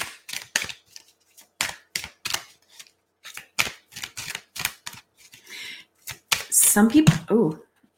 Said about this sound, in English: Some people shuffle decks and it just amazes me how they shuffle them. So one day I hope to be like those people who go super fast.